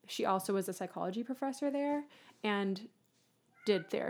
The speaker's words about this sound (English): Sorry if you hear some meowing in the background. It's not me or …. It's the cat.